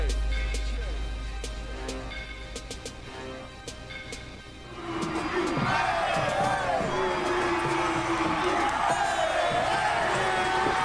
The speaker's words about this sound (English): Yeah, you hear them cheering as we end that song